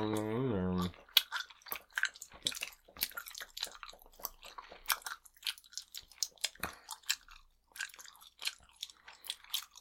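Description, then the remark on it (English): Chewing gum, with wet, smacking mouth sounds and small crunchy clicks in an uneven, continuous rhythm, after a brief steady buzzing tone at the start. “We're supposed to be chewing gum.”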